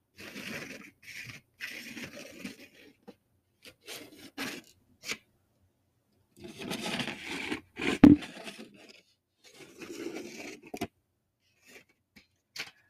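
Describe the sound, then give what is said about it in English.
A box of colored pencils (red, yellow, three greens, two blues, a purple, two browns and a black) is handled after its lid is taken off, with bursts of dry rubbing and scraping of wood, a clack around the middle, and brief quiet gaps between the rattling movements. “Here we go. Here are the actual colored pencils.”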